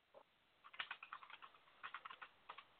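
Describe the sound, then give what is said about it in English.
Rapid typing on a computer keyboard, bursts of quick clicky keystrokes in an uneven rhythm with brief pauses, fairly quiet, no voices. “I'm typing there.”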